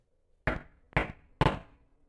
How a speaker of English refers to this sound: He passed the door 12 times before he had the courage to go up and knock, but he made a dash and did it.